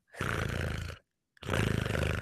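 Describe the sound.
A person imitates a cat's purr: two long, throaty, rattling rumbles with a rapid fluttering pulse, separated by a short pause for breath. Fairly loud, with no other talking.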